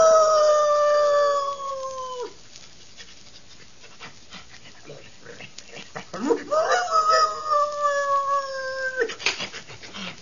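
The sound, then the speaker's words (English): Sheriff Skinner's dog howls twice in long, drawn-out wails, the first fading after about two seconds, then a quiet pause before a second howl rises and holds loud. “And later, when the ashes had cooled and while Sheriff Skinner was consoling Dr. Glazier on his loss, the sheriff's dog...”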